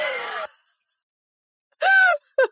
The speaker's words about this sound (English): I audibly gasped for, didn't know if you caught that.